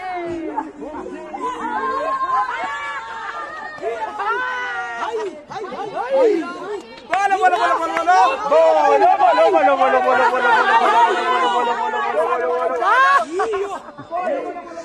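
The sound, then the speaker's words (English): A crowd of LGBTI activists chants traditional songs together, loud, with overlapping singers holding long tones amid a lively, steady hubbub. “I'm going to move closer to the crowd as they continue to chant some traditional songs.”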